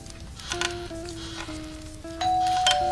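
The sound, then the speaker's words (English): A doorbell chime rings out a short melody of sustained, mid-pitched tones that step up and down, with bursts of hiss over them. It grows louder in the final second. “Who could that be? Let's go answer it”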